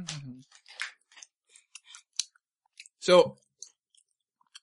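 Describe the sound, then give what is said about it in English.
Munching on chewy Tootsie Roll candy: scattered soft clicks and smacking mouth noises at irregular intervals, with a short hum-like vocal sound at the start and a louder one near the end. “Do we want to have our roll in just us munching on Tootsie Rolls?”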